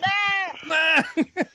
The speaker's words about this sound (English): Oh my God, that sounds terrible. Oh, look at his poor balls. I think you gotta knock that goat out and then get the yeah, you gotta fuck that guy up because if he's making this noise. Oh my God. You can't stand for that.